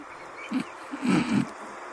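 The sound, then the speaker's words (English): A person's stomach growls while held right up to the microphone, a low, gurgling rumble rising in a few short bursts, the longest near the middle, over a faint steady hiss. “So why do you think my stomach's doing that?”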